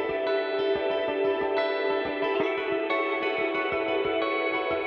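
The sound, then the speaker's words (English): A distorted electric guitar plays a sustained, shimmering part with a bright, sparkly effect that sits above the string attack, steady and fairly loud, with no voices. “Cause it's a strange distortion, like I can hear more of like the sparkle in it than I can the string, if you know what I mean, which is why I really like it.”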